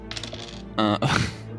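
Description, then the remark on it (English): A quick clatter of dice tumbling across a hard surface as fire damage is rolled and two ones are rerolled in a tabletop role-playing game, a few light rattles followed by two louder bursts of rolling, with no voices. “I rolled 2 ones, and it turned into a 5 and a 6, so that is 11 fire damage.”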